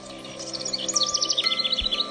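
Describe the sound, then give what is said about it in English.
Birds chirp in a video game's sound effects, quick repeated high tweets over a steady background of soft music or ambience, the calls bright, coming in a lively run of short notes with no talking. “I think just the sound effects, like the birds chirping and stuff, are so nice.”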